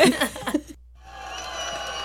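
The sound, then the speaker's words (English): A short burst of voiced laughter cuts off into a moment of silence, then a crowd applause sound effect rises and holds as a steady, even wash of clapping to the end. “If my crowd applause would come in.”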